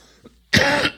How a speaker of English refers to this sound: Excuse me. Clear my throat here.